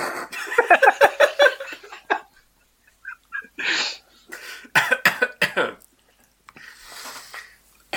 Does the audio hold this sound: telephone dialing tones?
no